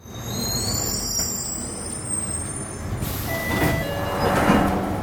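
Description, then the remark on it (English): A London Underground train rolls into Morden station, where it terminates, with a heavy low rumble and a high electric whine, then brakes with a loud burst of air hiss. Fairly loud, with no talking. “This station is Morden. This train terminates here.”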